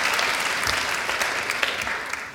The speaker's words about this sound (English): You can clap for her. Yes, you can.